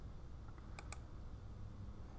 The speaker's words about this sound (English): Let's just type up Miami tides. That's what I'll do.